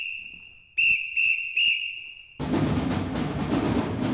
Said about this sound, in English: My job is to blow the whistle to call the numbers that we play in the group.